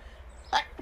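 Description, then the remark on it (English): A single quick sneeze bursts out, a short sharp breathy blast rising over a quiet low hum, followed by a faint breath. “I am totally going to sneeze.”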